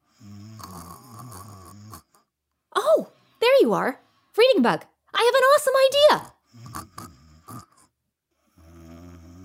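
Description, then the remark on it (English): A cartoon character, the Reading Bug, snores while asleep in low, buzzy, rumbling breaths, once at the start and again at the end, with a lively voice talking in between. “Reader, Bee, I think the Reading Bug is... sleeping, yeah.”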